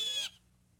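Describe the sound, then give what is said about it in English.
A single shrill, harsh blue jay warning call rings out loud, lasting only a moment before cutting off into near silence. “Its shrill call serves as a warning to other creatures of the woods.”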